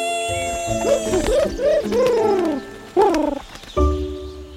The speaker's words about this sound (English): That ostrich is back, and I think he's on to us.